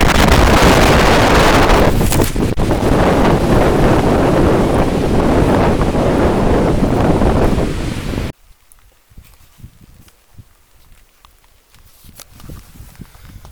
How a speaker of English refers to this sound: It was lightning, thunder, wind pushed in thick clouds. Anyway, I get back to my tent here and looks like the tent poles got bent. Bummer. Yeah, that wind, boy, it's powerful up here.